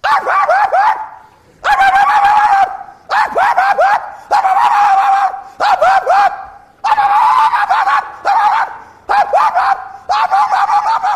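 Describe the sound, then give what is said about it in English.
A small chihuahua yaps loudly and shrilly at the fence of the Lamartinis' house, firing off high-pitched barks in quick bursts separated by short pauses, with no other sounds around it. “And out of nowhere, this little chihuahua dog, comes right up to the fence and starts it.”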